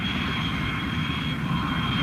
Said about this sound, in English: Tintin, you're clear to go. In her Ladybird jet